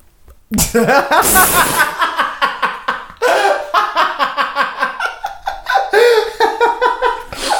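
A woman lets out a sudden, sharp gasp of surprise, close and loud, followed by several seconds of rhythmic, bursting laughter that rises and falls in quick pulses.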